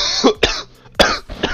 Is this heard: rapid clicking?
no